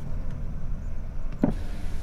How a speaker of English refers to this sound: Hear that traffic?